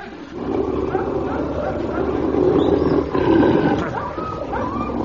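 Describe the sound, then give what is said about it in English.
A dog, Prince 439, a recruit in a dog training course, growls in a low, continuous rumble that lasts about five seconds, swelling slightly in the middle with a few rougher, higher snarling edges before easing off. “Absolute slacker, that dog.”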